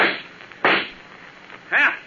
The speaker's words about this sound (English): Too bad I had to shoot him.